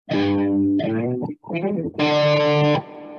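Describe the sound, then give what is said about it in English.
A loud distorted electric guitar plays a short riff: a sustained buzzing note, a quick run of choppy notes, then a final long held note before cutting off. “Can you hear my guitar?”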